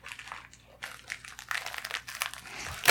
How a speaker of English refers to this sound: Oh, yeah. So, as per usual. Non-visual unboxing. As usual, it just came in a white bubble mailer. With, like, they always have the same sticker on them.